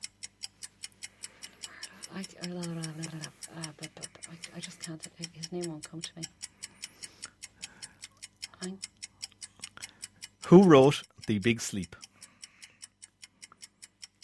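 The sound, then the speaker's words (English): A steady, evenly spaced ticking of a quiz countdown clock with 25 seconds left runs throughout, quite prominent, while a person speaks hesitantly over it and another voice briefly cuts in loudly near the end. “Okay, I'm going to tell you there are 25 seconds left on the clock.”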